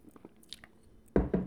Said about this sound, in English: So drink of the day, Sapporo. Let me try a sip.